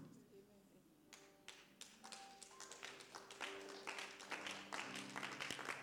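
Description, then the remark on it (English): Sparse, uneven claps from a small crowd start slowly and grow denser, a ragged scattering of hands rather than full applause, with faint voices and a low hum underneath. “The clapping is even tattered.”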